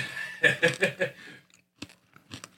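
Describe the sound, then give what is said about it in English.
Crisp crunching from someone chewing food, a quick run of four or five bites followed by a few scattered, quieter crunches with brief pauses between them. “Yeah, you're gonna hear that, so you might want to crunch through that and get rid of it. Yeah, like your chewing noises are in my head.”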